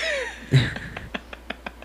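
Someone clears their throat right into a microphone: a rough, low burst followed by a run of short, evenly spaced catches that fade out. No one speaks.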